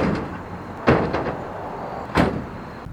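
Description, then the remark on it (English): A slimy, swamp-plant-encrusted bike is thrown into the back of a truck: two loud, sharp clattering thuds about a second apart, with a few lighter knocks between them over a steady rumbling background. “We threw the swamp plant encrusted bike in the back of the truck.”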